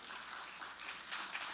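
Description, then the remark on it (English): An audience clapping in praise as an offering to the Lord, a dense, steady wash of many hands with no distinct individual claps, sustained evenly and fairly soft throughout, with no voices. “Somebody give the Lord a praise offering right now.”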